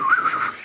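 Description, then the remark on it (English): A short, clear whistle from a person standing in a road holds a single wavering pitch that rises slightly and then settles, heard alone for under a second. “Why are you whistling in the road?”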